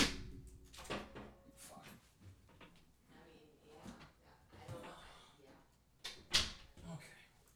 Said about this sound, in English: I'm gonna close my door.